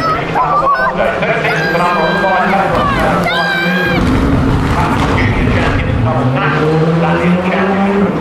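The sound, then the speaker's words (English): A rally car driven by Kalle Rovanperä roars loudly past, its pitch climbing and swooping as it revs hard, over a steady wash of crowd chatter and noise. “Angry, blustery cars.”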